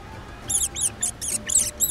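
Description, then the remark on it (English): A quick run of about six shrill meerkat squeaks, chirping in a steady rhythm, with no one talking. “Excuse me for asking, but are you guys meerkats?”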